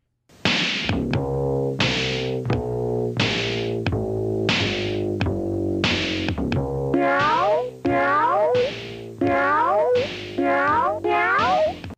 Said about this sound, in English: He's playing this song that's just going meow, meow. It's the most cat thing to play on the keyboard, and they're making him do it.